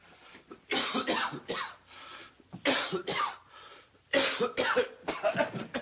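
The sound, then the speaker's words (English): Igor coughs and spits in the eye of Neumiller in a courtroom, a bone stuck in his throat: a series of harsh, wet coughs in three bursts, fairly loud, with throat-clearing rasps and a spluttering, spitting quality between them. “You spit on me. I'm sorry, I cough.”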